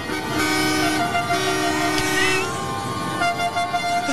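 Loud, sustained truck horns blare continuously from trucks lining the streets of downtown Ottawa, heard from a drone flying overhead, several overlapping tones droning and honking at once with a dense street din beneath, no speech.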